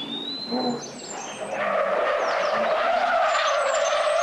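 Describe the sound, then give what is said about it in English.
A car races by at speed in a remote area in the middle of nowhere, its tires squealing in a long, sustained high-pitched skid that grows louder and holds steady, with engine roar underneath and a faint bird chirp early on. “Who is driving like a madman out here in the middle of nowhere?”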